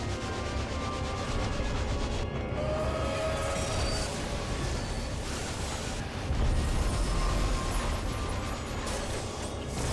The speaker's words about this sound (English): Ghost Train? Choo-choo. Dude, I'm so hyped for Phantom Train.